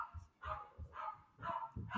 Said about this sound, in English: And she brings her dog. She brings dogs with her. That's not my dog, but yes.